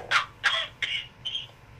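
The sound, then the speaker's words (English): A fit of four harsh, raspy coughs in fairly quick succession, the first three loud and the last one a bit softer, with no talking in between. “Sorry, I have a cough.”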